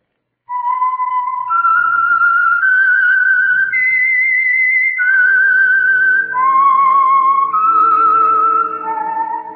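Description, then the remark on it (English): A lone whistled melody carries a slow, eerie tune of sustained notes stepping up and down, with faint orchestral accompaniment underneath, fairly loud from start to finish. It is the signature theme whistle of a radio program. “Whistle is your signal for the Signal Oil program, The Whistler.”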